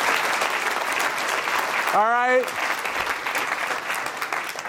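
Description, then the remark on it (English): Steady audience applause for a speaker at the end of a talk fills the whole stretch, a dense even crackle of clapping hands, with a single man's voice briefly speaking over it partway through. “Oh, we have applause?”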